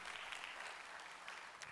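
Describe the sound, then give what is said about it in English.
An audience bursts into applause for police officers, a dense, steady wash of many hands clapping at once with bright, crackly texture and no voices standing out. “Give our police officers a huge round of applause, by the way.”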